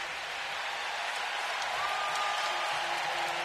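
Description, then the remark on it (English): A large crowd at Oracle Arena gives a sustained ovation as Al Addles is introduced during Game 4 of the 2019 NBA Finals, a dense, steady roar of clapping and cheering that holds loud for several seconds, with a few thin whistles rising above it. “And listen to the ovation as they introduce Al Addles to the crowd here at Oracle.”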